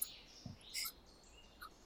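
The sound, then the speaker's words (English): Faint, high-pitched bird chirps from outdoors, a few short tweets scattered across a quiet background, with no voices present. “There's birds out there too now.”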